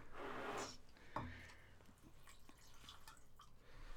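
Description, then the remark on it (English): Basil Hayden bourbon poured into a glass: a short gurgling splash, then a sharp clink and a few soft drips and small rustling movements. “Let's pour a little bourbon.”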